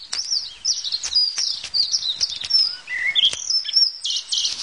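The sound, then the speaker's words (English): Dense outdoor birdsong fills the air, with many high chirps and twittering calls overlapping continuously, some bright, others softer, with no voices present. “When people said to me, work in radio, because you get to hang out with loads of birds, never had this in mind.”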